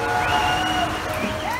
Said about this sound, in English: Things are so bad that in Sydney the other night, people posted videos online of elated cheering echoing through the streets.